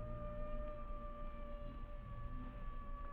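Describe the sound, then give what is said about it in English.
Coyotes howling at night: several long, steady, high-pitched wails overlap and hold their pitch for the whole stretch, at an even, fairly quiet level with no voices. “Sure wish those dad-burned coyotes didn't sound so much like human beings.”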